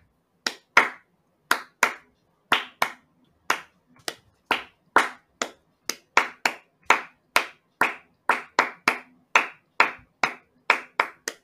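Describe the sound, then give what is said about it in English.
Sharp hand claps tap out the rhythm of a theme song, about two dozen crisp, loud strikes in uneven patterned groups, some quick pairs and some spaced pauses, with no talking over them. “Wait, can you clap out the Not a Scratch theme song?”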